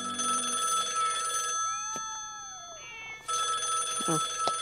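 A telephone rings loudly, with a long buzzing ring, a short pause with a few gliding tones, then a second ring. No one speaks.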